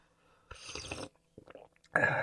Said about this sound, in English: Sorry, I have to make that sound while I'm sipping something hot because it makes the trickling down of heat much easier.